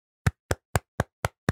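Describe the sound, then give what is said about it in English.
Six sharp hand claps in a steady, fairly quick rhythm, each a crisp, bright smack with a short decay, with no voices. “Can you try and remember to get my clap in?”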